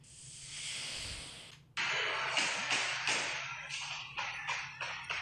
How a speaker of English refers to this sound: Somebody shot cell phone video of the party, and you can hear the shots ringing out.